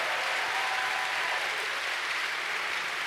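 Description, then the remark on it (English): A church audience breaks into steady, sustained applause for the fathers standing on Father's Day, a dense wash of many hands clapping at an even loudness for the whole stretch, with no voices standing out. “Come on, Dad, stand up and let's make some noise.”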